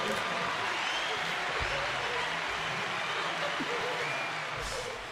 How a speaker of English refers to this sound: big round of applause. Big round of applause. Well done. Well done. Don't we have a button for that?